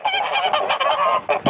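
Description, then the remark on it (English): A goose honking sound effect: a goose honks repeatedly in quick, raspy bursts, loud, forming an almost continuous chorus of nasal calls over about a second and a half. “She calls them geese.”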